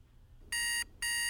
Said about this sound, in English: By the time my alarm rang at 6 a.m., I doubted I'd closed my eyes for more than 10 or 15 minutes at a time.